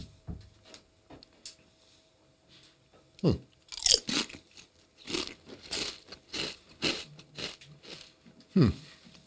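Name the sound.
crunching on potato chips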